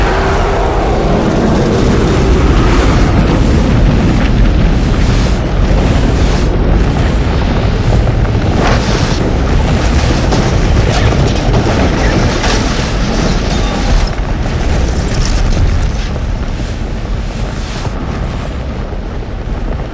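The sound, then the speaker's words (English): A massive explosion of an entire building block roars and keeps thundering: a dense, rumbling blast with crackling debris that stays loud and steady for the whole stretch, with no voices. “For it was at that moment when the entire building block around us exploded.”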